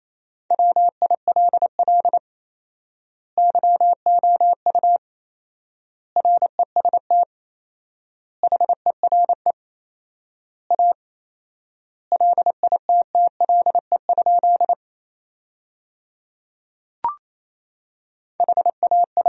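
Fast Morse code at 28 words per minute with fourfold word spacing, sending sentences built from the top 500 words as a steady mid-pitched beep, rapid dots and dashes grouped into words with long pauses between them. A single soft click sounds partway through; no voices.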